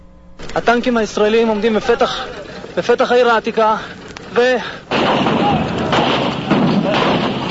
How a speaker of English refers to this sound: We never think about it, but those gates are there to protect the city, and when they're closed, they're big, heavy doors, so the tanks have to knock it down. You'll hear that, and the entry of the first Jewish liberating soldiers into the old city.